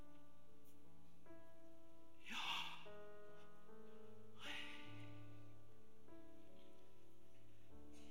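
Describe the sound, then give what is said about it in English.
Two slow, deep breaths, a long inhale followed by a long exhale, clearly audible over soft, sustained background music. No one speaks. “In fact, we know that the pronouncing of the sacred name was an attempt to imitate breathing.”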